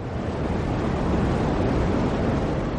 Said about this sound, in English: It might remind you of the static that you come across when you tune in an old analogue radio set, but this is the oldest noise you'll ever hear, and probably the most significant. It's the sonified afterglow of the Big Bang